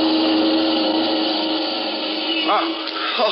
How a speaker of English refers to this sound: Hey, look at that car coming up the street, would you? Hey, Nick, watch out. That car is headed right at you. Jump, Nick.